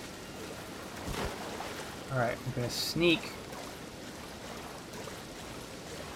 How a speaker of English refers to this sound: Okay, now it's raining. Maybe that'll cover up some of my sound. Assuming that this is a good video game. Not some sort of terrible video game. Then the rain sound should cover up my other sound.